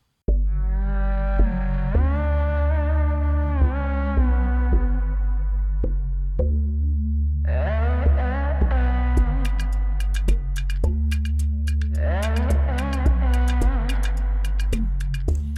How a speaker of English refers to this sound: a completely muffled, potentially pitch-shifted, hyper-distorted voice.